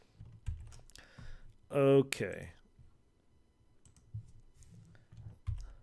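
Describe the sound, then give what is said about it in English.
Scattered key presses on a computer keyboard click and thump at an irregular pace, with a short tonal, voice-like burst in the middle. The keystrokes are fairly quiet. “if I held down A for a couple seconds and then pressed a different key”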